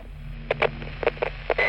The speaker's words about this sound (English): Something is wrong, he immediately thought, as the radio picked up static and a few whirs and whistles at the other end.